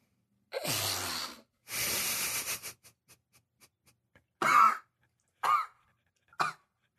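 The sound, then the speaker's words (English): A person chokes on a sip of water: two long, harsh spluttering bursts, a few faint clicks, then three short, rough coughs spaced about a second apart, with no talking. “So I took the sip of water there. It didn't spit it out, but almost choked.”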